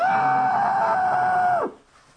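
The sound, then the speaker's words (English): Someone imitates a man screaming: a single loud, sustained cry held at a steady high pitch for over a second, then sliding downward and breaking off abruptly into quiet. “But you heard him screaming down the hall?”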